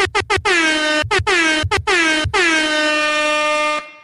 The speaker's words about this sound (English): Air horns for my daughter.